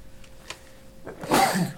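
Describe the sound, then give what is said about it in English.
A single sneeze: a sudden, hissy burst of breath that rises sharply after a near-silent lead-in and fades within half a second. No one talks. “Bless you.”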